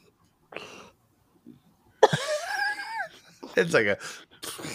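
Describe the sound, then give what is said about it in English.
A dog named Sammy, lying on her back, snorts and huffs into the microphone in several short, loud, breathy bursts, with a brief whiny vocal sound among them. “And snorting into the mic. Let her snort again.”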